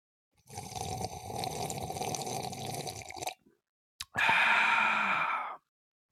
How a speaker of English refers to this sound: If you have your coffee mugs, your travel mugs, your sippy cups, your doggy bowls, if you have a beer hat, you want to drink it like that, then go ahead and do so and join me in this sip of cafecito.